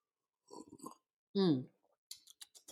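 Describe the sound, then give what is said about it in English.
Someone takes a wet sip of wine from a glass, gives a short satisfied vocal sigh, then makes a few soft lip smacks and clicks. “Yes, make sure y'all got y'all wine pulled out because I'm finna give y'all all this good tea today.”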